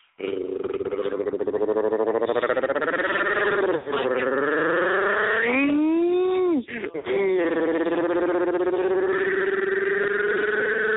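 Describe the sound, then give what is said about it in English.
A person imitates a revving motorcycle with their voice: a loud, continuous buzzing drone for about eleven seconds, its pitch rising and falling, with two brief breaks for breath. “I was pretending to be a, motorcycle.”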